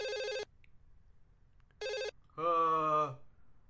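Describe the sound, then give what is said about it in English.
A telephone placing an outgoing call, dialed by pressing a giant pot-leaf button on the phone, rings with short, buzzy electronic trills separated by a pause, followed by a longer, steadier tone, with only faint background noise between rings. “It's ringing.”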